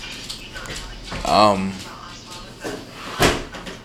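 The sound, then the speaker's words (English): A lightweight window slams shut with one sharp bang near the end, after a brief squeaky scrape of it moving. Faint voices and background noise run underneath. “Oh, well, then I thought it would be a much heavier window than it was.”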